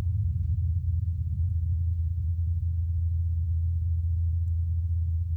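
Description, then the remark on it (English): A deep, steady hum from a helicopter on Mars, its motor spinning the blades at over 2,500 revolutions per minute as it flies away, drones continuously, a low rumbling tone holding at a fairly even level throughout with no voices. “Now it's flying away. The motor sound gets fainter.”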